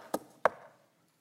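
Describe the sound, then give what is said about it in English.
Two firm knocks on a door, spaced about a third of a second apart, fairly loud, each with a short hollow ring before fading into silence. “And then one day there's a knock on the door.”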